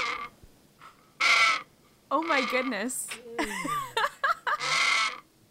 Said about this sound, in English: I love just the absolute theatrical melodrama that these birds bring. Because they have a call that sounds like a squeaky old door flapping in the wind on a stormy night.